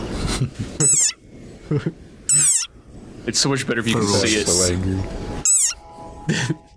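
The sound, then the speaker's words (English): An angry desert rain frog's shrill, squeaky war cry rings out in about four short, loud bursts, much like a squeezed dog toy, while a person talks in the gaps between them. “It sounds like a dog toy. But actually, this is the sonorous war cry of a very angry frog.”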